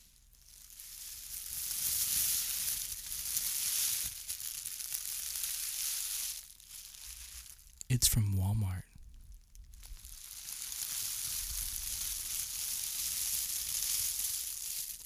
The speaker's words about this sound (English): I've got a little plastic bag in my possession right now, and I'm going to play with it some.